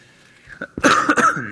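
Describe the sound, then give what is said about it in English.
A person coughs: a small throat catch, then a couple of loud, harsh coughs in quick succession, with no talking. “I just coughed into your earbuds a few times.”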